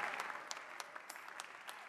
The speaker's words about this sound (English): God bless you. As you are clapping, they are coming. Come. Jesus is calling you.